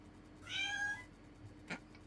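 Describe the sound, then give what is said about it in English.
A person imitates a cat with one drawn-out, wavering meow, clear, followed moments later by a short dull knock. “makes cat noises for no apparent reason.”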